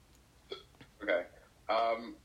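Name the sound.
hiccup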